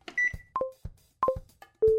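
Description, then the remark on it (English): Air fryer control buttons beeping as they are pressed after the drawer is closed: a series of short electronic beeps at varying pitches, each preceded by a soft press click, ending on a longer, lower tone. No voices. “Right, so then what you do is the buttons.”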